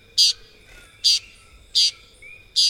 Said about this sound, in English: The Puerto Rican toady is a tiny green bird found only in Puerto Rico, where the species is called San Pedrito.